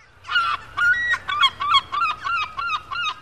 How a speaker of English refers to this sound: Yes, the seagull, a scavenger which eats food scraps or other dead animals. Yes, it reminds me of the seaside, although I wouldn't describe that as a beautiful sound, more of a screech.